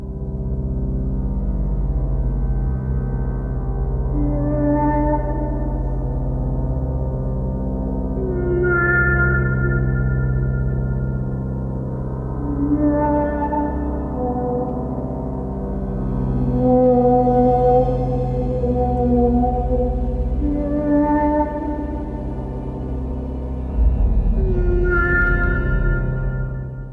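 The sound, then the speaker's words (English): Music from the score of the film Arrival, built on a deep, steady synth drone note, with eerie, glassy, otherworldly synth tones swelling and fading every few seconds. The music plays alone, with no voices. “There's that drone note. Yep. There's the sort of strange synthy.”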